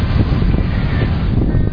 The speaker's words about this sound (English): Okay, that's not even the wedge if you heard that wave. They had about 20-foot high waves this morning in the face of the waves.